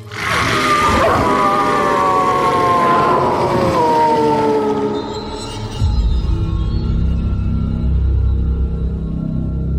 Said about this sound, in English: A stronger, unified, dependable pack. We howl in unison.